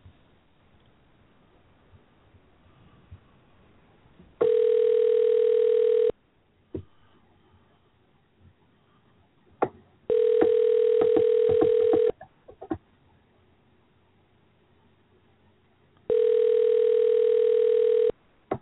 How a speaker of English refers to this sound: Hang on, we'll give him a call. I should just be saying, I just read the phone numbers as I dial them, right?